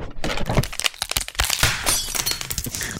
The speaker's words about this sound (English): And when I did that, I extended the footrest on the chair. And when I did that, this is the sound that that I heard.